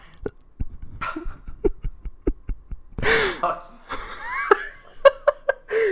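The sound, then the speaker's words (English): A short, loud burp breaks out midway, preceded by quick breathy bursts and followed by giggling laughter from more than one person. “Oh, 20 years old and burps are still funny.”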